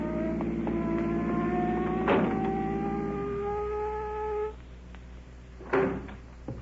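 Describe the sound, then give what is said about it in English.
A car with a police officer in it comes up and its engine hums steadily, then winds down and cuts off as the car comes to a stop, followed moments later by a single solid thunk. “Look at that car coming up here.”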